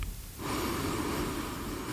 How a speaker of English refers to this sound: you're going to end your practice by going back to your breathing. In.